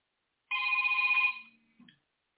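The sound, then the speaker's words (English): A phone rings once with a bright, steady electronic trill lasting under a second, then fades, followed by a brief faint chirp. No one speaks. “If you don't shut that phone off, every show, dude, shut the phone off.”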